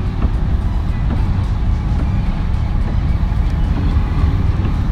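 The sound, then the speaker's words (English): A loud, steady low rumble of a semi truck passing alongside a driving car, its heavy engine and road roar filling the whole stretch without letup and no voices. “Man, like, I was driving. Y'all like this truck was finna hit me.”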